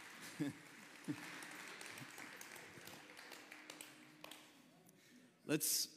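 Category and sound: crowd, audience clapping hands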